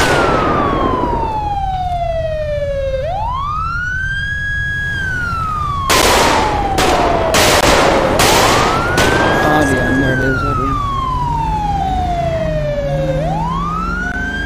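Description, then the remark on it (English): A loud police cruiser siren wails in slow rising and falling sweeps over a low engine rumble, with a cluster of sharp, noisy bursts cutting in partway through. “He still has his sirens on, but yet he's, like, not even...”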